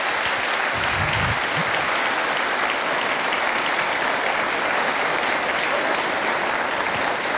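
Sustained audience applause, a dense, steady wash of many hands clapping at an even, fairly loud level throughout, with no talking over it.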